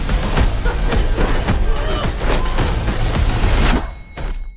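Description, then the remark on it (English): Cars fire cannons: loud, dense cannon fire booms again and again over a constant roaring din, the blasts coming in quick irregular succession before cutting off abruptly, leaving a brief quieter tail. “Ooh, cannon cars.”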